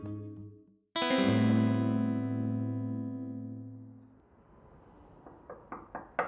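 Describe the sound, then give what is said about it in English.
A loud, sustained electronic chord rings out and fades, then four quick, sharp knocks rap on a door, rising slightly in force. “I only got to the first round of why when there was a knock at my door.”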